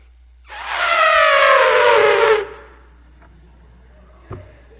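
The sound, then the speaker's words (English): A person imitates an elephant's trumpet with one loud, brassy blare lasting about two seconds, its pitch sliding slightly downward before it cuts off, followed by quiet and a faint click. “And I do a world-renowned, internet-sensational elephant impression. It goes something like this.”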